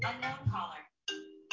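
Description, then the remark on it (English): A new iPhone 13 rings with an unknown caller during a class: a brief jumble of bright melodic tones, a short pause, then a steady sustained electronic chime that starts again at the very end. Moderately loud, with no talking. “Unknown caller. Sorry. Forgot to turn it off.”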